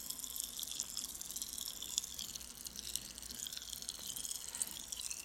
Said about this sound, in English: It just sounds like someone peeing to me. I'm sorry. I know it's a hard pill to swallow. You know what it is? It's water being poured into a glass. It is Pop Rocks in someone's mouth.